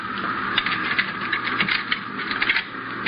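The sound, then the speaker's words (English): Keys jangle and metal clicks and scrapes as a lock is worked and a door is opened, steady for a few seconds, with no voices. “Now here, pick up these keys and open that door.”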